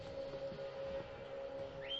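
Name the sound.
loud whistle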